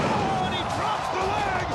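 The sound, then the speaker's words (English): Fireworks bang and crackle in a few quick bursts, synced with Hulk Hogan's leg drop in a wrestling match, nearly buried under the steady roar of a loud arena crowd, with a heavy thud landing among them. “Check this out, they sync up the fireworks going off with Hogan's leg drop.”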